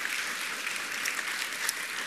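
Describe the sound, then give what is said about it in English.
An audience applauds together, giving the Lord a round of applause for the ministry in Myanmar, a dense steady wash of many hands clapping at an even level throughout, with no voices standing out. “Maybe we can give the Lord a round of applause too, just for all he's doing there.”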